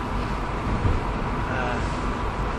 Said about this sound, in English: I am recording this in a car, so like, sorry for the background interference noise